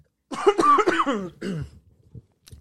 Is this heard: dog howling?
no